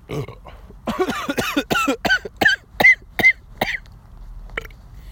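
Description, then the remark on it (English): A loud burp stretched into a rapid string of rhythmic gulping pulses, followed by a brief cough after a short pause, with no talking. “I see your cladding, I read you a burp and a cough.”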